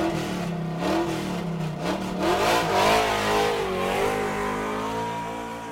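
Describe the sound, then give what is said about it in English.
A race car engine revs up and pulls out of the pits, its pitch rising and wavering through several surges over a steady, loud mechanical roar, with no voices. “Forgot to pull out of the pits.”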